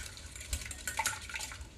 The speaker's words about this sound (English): What the whisk is doing is the whisk is actually used to incorporate air into things. So you're gonna be getting a lot of air into our eggs. We're gonna keep beating those for just a minute.